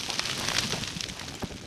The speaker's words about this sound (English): Every other year for the last 2 decades, Klaus and a crew under his direction would set fires like this one, recorded in 2019. The fire killed hardwoods and encouraged pines to seed in these mountains.